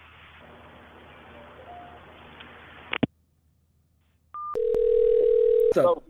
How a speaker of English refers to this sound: I wanted you to say, "God save the Queen," and then hang up the phone, okay? Say, "God save the Queen," and hang up.